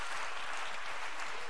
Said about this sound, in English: Come on, somebody, clap your hands to the Lord and give Him praise.